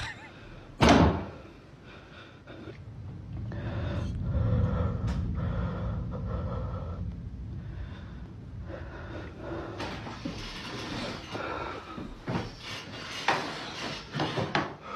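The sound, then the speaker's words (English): A heavy wooden thud lands early, followed by a few softer, muffled knocks against a low rumbling background: knocking from inside a closet that wakes a man. “This next one says, a man is woken up by knocking in his closet.”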